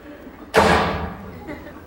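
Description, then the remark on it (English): A single loud door slam bangs out sharply, followed by a ringing decay and a faint second knock as it settles. “We need a door slam.”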